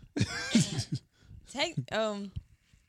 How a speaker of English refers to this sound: excuse me. I'm doing it again. It was too loud. You can still hear me coughing. Yeah, I can hear you coughing, but I'm doing this like it's gonna dilute your sound.